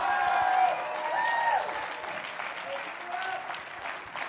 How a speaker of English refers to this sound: If you believe it, can you clap your hands and give the Lord a mighty shout?